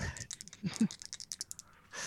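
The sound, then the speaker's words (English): A quick flurry of small hard clicks and clatters as dice are rolled across a tabletop for a listen roll, rattling for about two seconds with no talking. “All right, grabbing my dice.”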